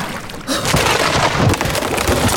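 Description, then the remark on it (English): A loud, steady roar of heavy rain in a thunderstorm at sea swells in after a brief quieter moment and keeps pouring densely, with a deep rumbling undertone and no voices. “Well, the storm hath finally broken the ship in half.”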